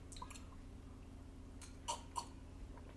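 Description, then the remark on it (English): Quiet sipping of Douce cognac from a glass: a few soft wet slurps and lip clicks, two sharper ones near the middle, over a low steady hum with no talking. “Pardon me as I take a sip of this Douce.”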